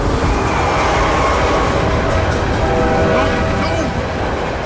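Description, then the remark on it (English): A freight train roars past at speed through a rail crossing, loud, with a steady, heavy rumble and rattling of freight cars filling the whole clip without letup. “The last thing I remember was seeing flashes of the van through the speeding freight cars before it disappeared out of sight like a ghost.”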